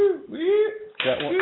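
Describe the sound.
A short burst of canned applause from a sound-effect button cuts in abruptly after a moment of voiced talk, a dense crackle of clapping lasting about half a second with a voice still underneath.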